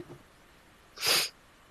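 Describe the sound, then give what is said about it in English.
A single quick sniffle, a short, hissy burst of nasal breath lasting about a quarter second, standing alone in an otherwise quiet stretch with no talking. “I had a little sniffle.”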